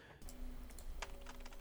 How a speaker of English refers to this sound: So he's got his laptop, he's typing in the mark.